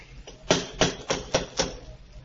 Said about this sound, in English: Go ahead and knock.